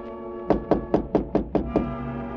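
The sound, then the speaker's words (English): Seven quick, evenly spaced taps on the door of a lodging room in a steady rhythm, moderately loud, with no voices. “The little cockney showed me to my room, and it was about a half hour later that I heard a tap on my door.”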